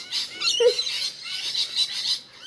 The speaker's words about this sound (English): What is that? Parrots? Like, well, yeah, we're not raised around parrots. Like, we're supposed to know that was parrots.